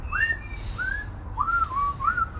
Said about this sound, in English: I can't whistle. Don't make fun of me.